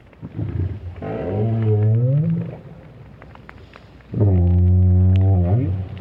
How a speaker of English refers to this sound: There's nothing wrong with this right whale, at least Roger Payne doesn't think so, but the renowned whale scientist was a bit perplexed by the sounds made by this lone adult.